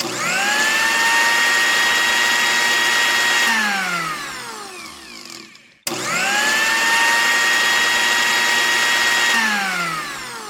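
A new blender whirs loudly and steadily as it blends a smoothie of six peeled medium oranges, a can of coconut milk, orange zest and vanilla extract. It winds down, then starts again for a second long run before beginning to slow near the end. The high motor whine dominates with no voices.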